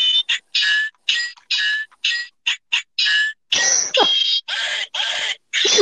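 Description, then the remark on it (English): A toy Minecraft sword plays its electronic sound effects: a rapid run of short, bright bursts with a chirpy tone, then several longer, harsher crunching blasts, loud and with no talking. “Why do you have a Minecraft sword that makes noises?”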